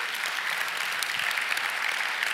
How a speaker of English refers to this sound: Yeah, you can clap.